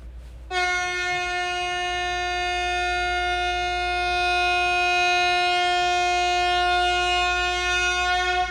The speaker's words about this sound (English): Happy birthday, everybody. That was my big honk to all the birthday people.